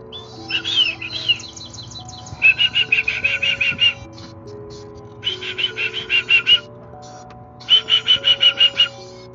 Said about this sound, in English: The birds that come close to me, I'm Birdman now.